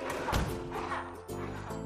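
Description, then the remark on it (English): A single heavy, booming stomp of a chocolate monster, heard from a distance, lands with a deep low thud, like a giant footstep, set against a steady humming tonal drone that continues afterward. “She tried to get some sleep, but every time she heard the distant stomp of the chocolate monster, it would interrupt her dreams, which weren't at all sweet.”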